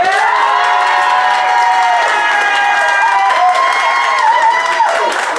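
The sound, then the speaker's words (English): An audience cheers and whoops with clapping mixed in, voting for one side, a sustained, dense roar of many voices lasting several seconds without pause, energetic. “We'll have cheers and whoops and clapping for Robin and Ben's side first.”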